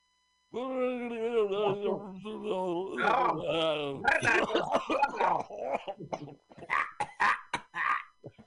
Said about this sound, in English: Excuse me, ladies and gentlemen. The cigarette makes you cough like that because, you know, he's not a smoker.